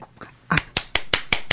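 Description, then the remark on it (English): A brief round of clapping: five or six sharp, crisp claps in a quick, steady rhythm, fairly loud and with no voices over them. “You've got applause.”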